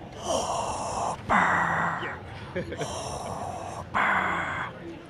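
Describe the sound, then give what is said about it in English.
Darth Vader's heavy, mechanical respirator breathing from Star Wars, with a hollow, filtered quality through his helmet, slow inhales and exhales alternating in a steady rhythm, fairly loud, with no talking. “Obviously, Chewie's roar and R2's beeps, but what is the one sound that evokes fear? Probably Darth Vader's breathing. It's pretty intimidating.”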